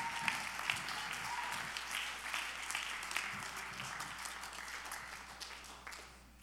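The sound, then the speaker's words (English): A crowd claps its hands in a dense, sustained burst of applause, many overlapping claps at a steady loudness that tapers slightly near the end, with no one speaking. “If anybody believes what I'm preaching, you ought to clap your hands all over this house right now.”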